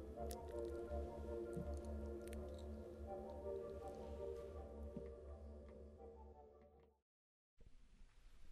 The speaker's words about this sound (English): It is really raining outside in Ohio tonight. I mean, it is pouring rain. Can you hear it? It's so darn peaceful. I can't get over how beautiful it sounds.